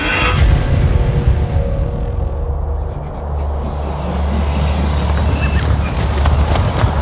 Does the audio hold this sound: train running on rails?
yes